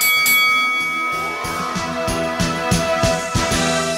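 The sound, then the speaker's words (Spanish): A boxing ring bell clangs again and again in a quick, fairly steady rhythm, each loud metallic strike leaving a bright, sustained ring that overlaps the next, with no talking. “¡Que suene la campana!”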